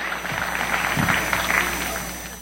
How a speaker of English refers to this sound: Wow, give him a big hand. You guys can head back to your seat.